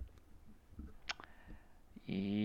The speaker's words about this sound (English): Why are you clicking out of so many windows? I'm trying to find my clock app.